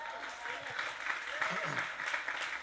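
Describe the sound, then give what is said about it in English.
An audience claps in steady, sustained applause for a married couple invited to share a lesson from their marriage, a dense wash of many hands at an even level, with a few faint voices murmuring underneath. “And so let's give them a big round of applause as they do.”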